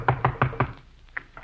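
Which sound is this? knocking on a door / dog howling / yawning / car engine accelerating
knocking on a door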